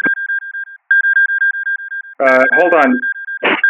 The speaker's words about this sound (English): Hold on a second. Okay. Good. What is that? I set my phone to chime every minute, 44.